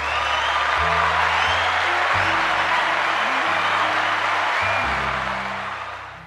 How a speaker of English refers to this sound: Call on his name. He is worthy to be praised. Round of applause.